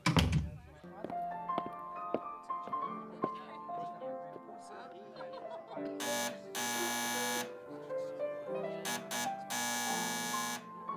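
A harsh electric door buzzer sounds in several bursts: a short one, a long sustained blast, then a few quick presses and another long buzz, over a steady tonal musical background.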